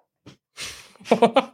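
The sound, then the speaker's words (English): A person imitates a dog: a breathy huff, then three quick, sharp barks in a steady rhythm, fairly loud. “Just another dog. Just one of the stray dogs that are around here.”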